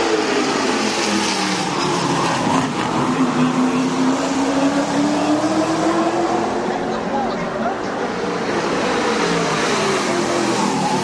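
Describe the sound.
Loud, continuous roar of race car engines speeding around a track, the cars sliding through a curve, the engine pitch rising and falling as they accelerate and ease off through the corners, with voices talking underneath.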